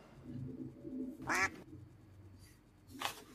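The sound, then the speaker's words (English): A person imitates a mallard duck with a loud, nasal quack, followed a moment later by a second, shorter quack, over a low murmur of background noise. “I'm a baby mallard.”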